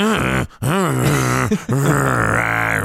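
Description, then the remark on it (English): A man growls down a phone three times in a row, deep, drawn-out and rumbling, his voice rising and falling with short breaks between each growl. No words are spoken. “She's just watched a man growl down the phone 3 times.”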